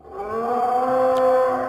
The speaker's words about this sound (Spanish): El monstruo le gritó a la torre. La sirena llamó. El monstruo rugió otra vez.